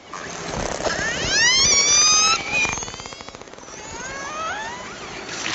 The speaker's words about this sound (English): These Icelandic killer whales aren't making these sounds for fun. They're using them to hunt their favorite food. herring. That's according to Lee Miller and his colleagues at the University of Southern Denmark, who recorded the sounds.